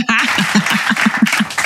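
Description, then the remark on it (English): A brief burst of applause sound effect: a couple of seconds of steady, dense clapping at moderate volume, with faint crowd voices or whoops mixed in. “I'm stalling because I'm trying to get to these claps, man.”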